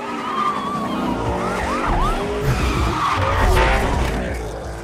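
A loud, roaring race car engine revs continuously while tires squeal in several short, sweeping chirps, as if the car is skidding through tight turns, like a car in the video game Need for Speed.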